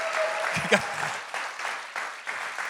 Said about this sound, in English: Come on, you got to keep clapping. You got to keep clapping. You got to keep clapping.